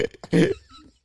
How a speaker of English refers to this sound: That I got the hiccup.